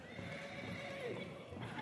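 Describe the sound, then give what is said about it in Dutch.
A person imitates a horse whinnying while pretending to ride a horse, a wavering neigh that dips in pitch near the middle and lasts under two seconds, moderately loud over a steady noisy background. “Maak eens paardgeluiden. Wat zijn van die paardgeluiden?”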